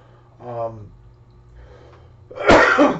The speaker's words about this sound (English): So I'm sorry, guys. I'm gonna be coughing all night. There's nothing I can do about it. I've been deathly ill for the last week.